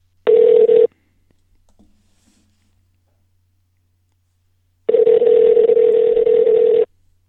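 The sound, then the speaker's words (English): A telephone ringing over the line: a brief electronic ring tone, a pause of several seconds, then a longer steady buzzing ring, clear and fairly loud with no voices. “Okay, phone's ringing.”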